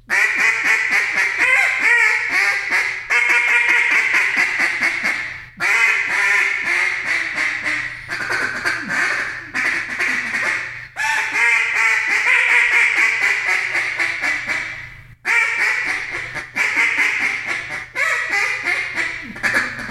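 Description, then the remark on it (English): Loud duck-call quacks imitating different kinds of ducks blare in rapid, varied runs for the whole stretch: some fast chattering sequences, some drawn-out raspy calls, broken only by a few short pauses, with no talking. “Just throwing all kinds of different ducks just around, just, you know, doing whatever you got to do.”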